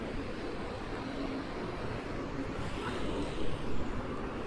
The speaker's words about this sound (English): You like the sound of the fountain, do you?